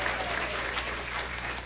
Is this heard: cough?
no